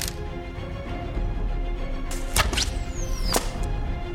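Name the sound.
arrows being shot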